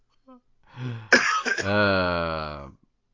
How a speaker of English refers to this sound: That cough is relatable. I bet other people have had this cough before.